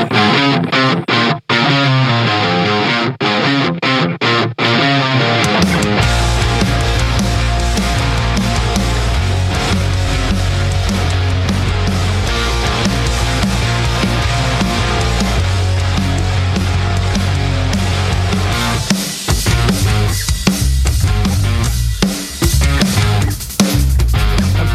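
A loud rock song driven by heavily distorted guitars, played on Radio Warrington, opening with a brief sparse intro before the full band crashes in with thick, sustained riffs and steady drums throughout.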